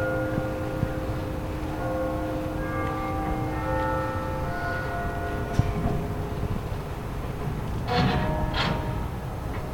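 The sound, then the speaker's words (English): Bells ring out in overlapping, sustained tones that linger and fade against a steady outdoor background hum, with a few sharp bursts of noise near the end and no one speaking. “Bell break.”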